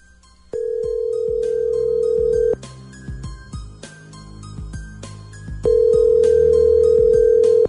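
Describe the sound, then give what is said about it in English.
An outgoing phone call rings on the line: two long, steady ringback tones about two seconds each, separated by a pause, heard over rhythmic background music. “Okay, so let's call Dan when we come back next.”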